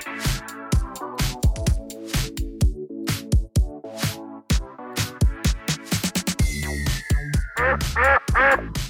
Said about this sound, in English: This cave is so dark. And is that a duck in the cave?